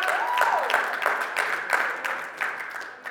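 A crowd claps for Jesus, a steady dense patter of applause at moderate volume that fills the whole moment, with a faint voice or tone briefly rising underneath near the start.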